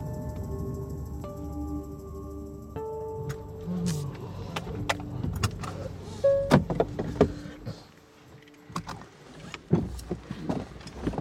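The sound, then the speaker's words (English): A car engine drones low and steady, its pitch stepping up in stages as it accelerates, followed by scattered clunks and rattles over the continuing rumble of the road, while driving past a small community at the base of a mountain. “We pass the small community where he lives, nestled at the base of an impossibly gorgeous mountain, and keep on driving.”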